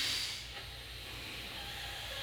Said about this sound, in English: Now close the left nostril with the middle two fingers of the right hand. Open the right nostril. Start breathing long in the hissing breath through the right nostril.